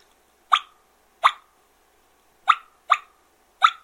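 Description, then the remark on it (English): Five short, raspy blasts from a multi-reed game call, each sharp and bright with a gritty buzz, the rasp made by the top reed vibrating as air is blown on the bottom reeds, spaced unevenly with silence between them and no talking. “If you don't shut it down, the top reed will vibrate and you'll get rasped and you'll get this. You hear the rasp.”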